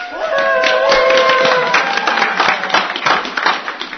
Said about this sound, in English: And the crowd goes wild!